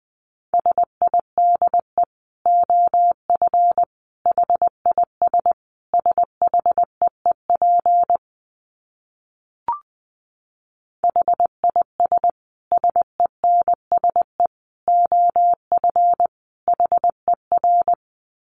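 Morse code at 20 words per minute: a single mid-pitched tone keyed in rapid dots and dashes, running in steady bursts with a brief silent pause and a faint click midway.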